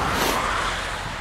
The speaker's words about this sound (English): And there is a group of cars passing by, and then another one from the right.